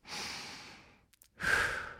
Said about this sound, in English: First is breathe. Take a deep breath.